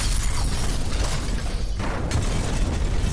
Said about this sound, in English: And a rhythmic sequence of earth-shaking booms began to ring out from the pits of the ravine, as the train cars began to strike with frequency into the sides and into the valley bottom.